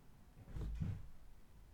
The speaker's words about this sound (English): Who is it? Who is it? Who's knocking on the door?